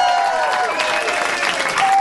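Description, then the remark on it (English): The audience at a live Harmontown show claps steadily and loudly throughout, a dense wash of hand claps mixed with cheering voices and a few high whistles rising above the applause. “Keep clapping.”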